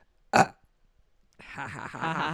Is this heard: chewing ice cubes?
no